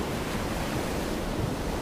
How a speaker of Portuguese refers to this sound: Eu gosto de me concentrar no som do mar.